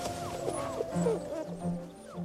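Wolf puppies in a nature documentary film about wolves in the western United States whimper and yip, a cluster of high, wavering whines sliding up and down in pitch, overlapping one another at moderate loudness.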